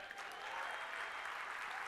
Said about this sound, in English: If you are in Africa, why don't you give God an applause?